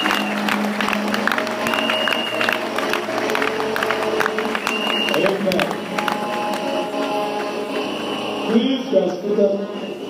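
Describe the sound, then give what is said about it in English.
An audience applauds as a clap offering to the Lord in a steady, dense wash of clapping that lasts the whole stretch, mixed with scattered voices, cheers and sustained musical tones. “Give the Lord another big clap offering.”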